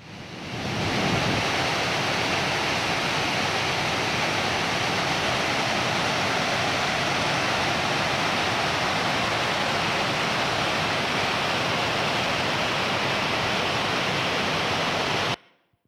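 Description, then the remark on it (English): The roar of Victoria Falls: a loud, steady wall of rushing water that swells up in the first second and holds unbroken until it cuts off abruptly, with no voices. “So, like Victoria Falls, I go and I'm amazed by it, but at the same time I go as close as I can to the edge”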